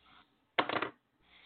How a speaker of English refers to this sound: Here you go. Here you go. Use this little dice right here and roll. All right.